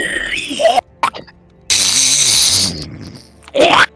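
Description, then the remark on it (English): Someone imitates a character on a galloping horse spitting with their mouth: a few sharp, hissy sputtering bursts, one longer spray with a throaty voiced buzz underneath, then a final quick spit. “Somehow, despite the fact he is galloping away on horse, spits at you, funk, like, it hits him in the back of the head.”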